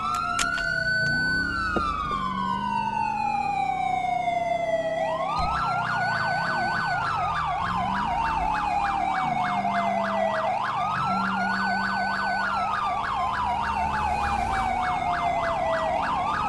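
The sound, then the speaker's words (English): A loud Los Santos police car siren, on an AI-driven car, wails continuously, its pitch sweeping slowly up and down in repeated cycles over a low engine rumble, with no voices. “That's a Los Santos police car!”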